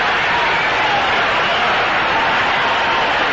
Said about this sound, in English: A tremendous burst from this pro Baltimore crowd here at Memorial Stadium, greeting the first hit of the ball game.